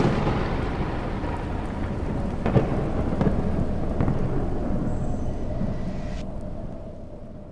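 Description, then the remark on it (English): A deep, rolling rumble of thunder from a thunderstorm, heard through open windows, fills the air over steady rain, with a few sharper cracks partway through before the storm noise slowly fades toward the end. “Where did that come from? Thunder lightning.”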